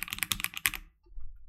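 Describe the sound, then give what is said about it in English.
A rapid burst of sharp, clacky keystrokes on a new custom-made mechanical keyboard, about eight quick clicks, then the typing stops and only faint low room noise remains. “Yo, is that the new clacky keyboard”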